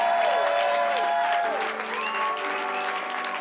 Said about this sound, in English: Come on, can we clap for those three preachers?